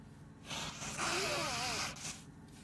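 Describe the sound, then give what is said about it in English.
A person blows their nose in one long, forceful honk lasting over a second, with a faint whistling squeak in the middle. Fairly loud, with no talking. “I'm going to have to probably blow my nose here in just a second.”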